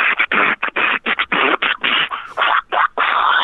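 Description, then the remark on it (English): Rapid, rhythmic bursts of mouth percussion come through a narrow, tinny phone line, a steady run of hissy, crackly beats with short gaps between them and no talking. “Is there some distortion on the line? Right. And when's he going to start beatboxing?”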